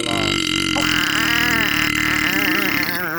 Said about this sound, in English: That was one of them G-subs burps right there, baby.